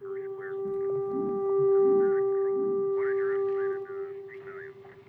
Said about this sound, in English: Is that the emergency broadcast system? The fuck are you playing for us? Huh? They're doing the tones from Close Encounters. Is it a choir?